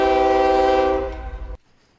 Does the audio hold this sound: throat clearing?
no